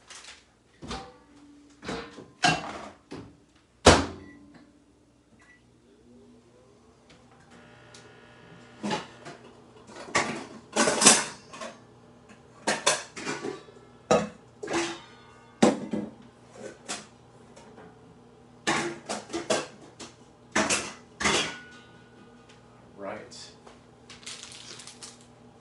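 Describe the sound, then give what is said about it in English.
A microwave door shuts with sharp clicks and clunks and its buttons are pressed to set 2 minutes 30 seconds on high, then a steady low electrical hum starts and runs underneath further scattered taps and knocks. “set time for 2 minutes, 30 seconds on high. And yeah, so here we go. Let's put it in the microwave.”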